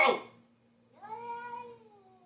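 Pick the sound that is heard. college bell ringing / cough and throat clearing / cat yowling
cat yowling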